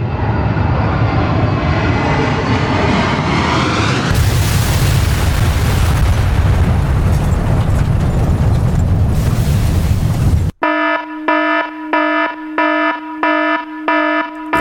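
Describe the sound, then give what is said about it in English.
A time-jumping spaceship's engine roars and rises in pitch, then it crashes into one of the World Trade Center towers in New York City on September 11th, 2001, with a loud, rumbling explosion lasting several seconds, followed abruptly by a pulsing electronic alarm beeping in a steady rhythm. “Upon arriving, something went horribly wrong and they crashed into one of the towers of the World Trade Center.”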